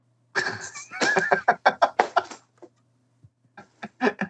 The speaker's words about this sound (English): The cat knocked over everything. This cat is going insane.